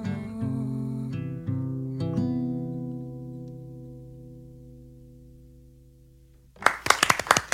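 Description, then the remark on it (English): A held, ringing musical chord slowly fades over several seconds at the end of a performance of new music in a studio. A burst of loud audience applause breaks out in the final second. “And the crowd goes wild.”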